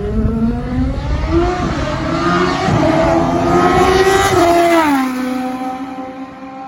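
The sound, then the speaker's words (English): A Rodin Formula 1 race car engine revs loudly at Donington, its high-pitched whine climbing steadily before dropping off sharply near the end, with no voices. “We had Liam Lawson in the Rodin car, the Rodin F1 car at Donington.”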